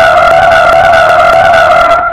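A car brakes hard with a loud, sustained tire screech, a steady high squealing tone that holds for about two seconds before easing off slightly at the end. No one speaks.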